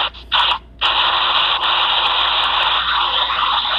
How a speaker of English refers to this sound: there's so much interference coming from you right now, it's not even funny.